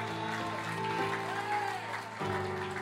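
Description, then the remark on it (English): A church audience claps for the Lord in a steady wash of applause, while sustained keyboard or organ chords hold underneath and a voice is faintly present. “Oh, can somebody give the Lord a clap of in the house?”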